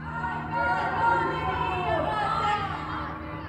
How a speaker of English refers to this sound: These chants spread between buildings and through Iran's capital city over the heads of the security forces below. Nearly all are women's voices. They chant from balconies, from open windows.